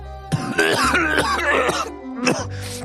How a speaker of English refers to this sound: Right, channel it. Come on. Cough, sneeze.